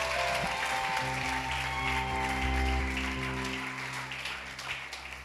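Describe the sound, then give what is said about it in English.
An audience claps steadily to celebrate the preacher's wife, a dense wash of many hands that holds strong before gradually thinning and softening toward the end, with a low hum running underneath. “If you don't clap, I won't preach.”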